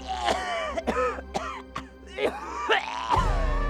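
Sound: coughing fit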